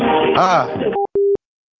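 A telephone line tone while dialing out: a short electronic beep, then a slightly longer steady one, following a second of muffled, rustling background noise.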